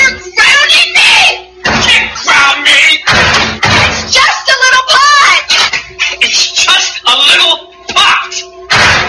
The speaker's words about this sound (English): Afraid of a few slammed doors? Get over it.